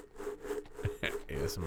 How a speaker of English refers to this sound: Oh, as you chew your ice. Bam.